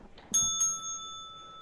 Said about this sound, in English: There you go. Ring the fucking bell.